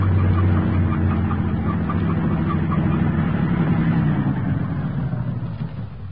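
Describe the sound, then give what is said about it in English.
A truck with no headlights on drives past, its engine rumbling in a steady, low droning hum that holds for several seconds before easing off slightly at the end, with no voices. “The truck has no headlights on, but it's going to pass right by us.”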